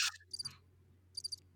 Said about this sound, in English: Crickets. That's pretty close. That works.